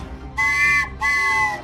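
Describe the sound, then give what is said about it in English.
A train whistle sound effect sounds in two loud, sustained blasts with a short gap between them. Its bright chord-like pitch holds steady in each blast, and no one talks over it. “The next stop on the Biscuits and Gravy train today is...”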